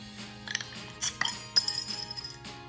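Beer glasses clink together in a toast, a few quick bright taps, the last one leaving a faint ringing tone, heard fairly softly over a steady low background hum.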